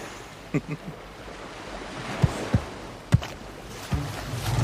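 Steady wash of ocean water sloshing around a small boat, broken by a few sharp hollow knocks and creaks as the hull rocks, moderately loud.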